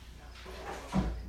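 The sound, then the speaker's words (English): A door is pushed open to prop it on a freezing morning, with a brief, soft scraping sweep that ends in a dull low thump; no voices. “It's a bit freezing this morning, so I'm going to prop open the doors.”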